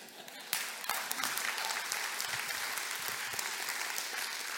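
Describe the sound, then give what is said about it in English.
A crowd breaks into sustained applause, many hands clapping in a dense, steady wash that starts abruptly after a quieter moment and holds at a fairly even loudness. “It's a good time for you to join them and clap.”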